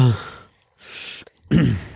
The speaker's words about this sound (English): going to keep breathing into the mic